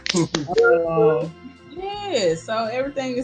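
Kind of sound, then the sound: human body sound, hand clapping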